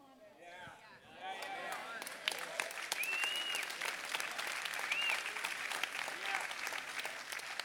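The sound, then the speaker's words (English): An audience breaks into steady applause after a brief spoken phrase, the dense clapping swelling quickly and holding at a fairly loud level, with a few faint voices and whistles rising from the crowd. “Now, I am going to say that I've been saved by grace, but I want to take a long pause right there until everyone claps.”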